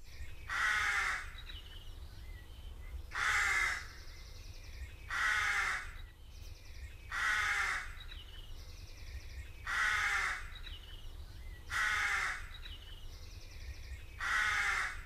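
A crow caws loudly and harshly about seven times, each call spaced evenly a couple of seconds apart, over a faint low background rumble with no one speaking.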